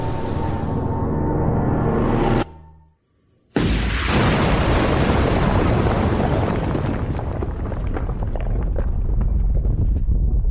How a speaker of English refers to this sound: The earth quaked.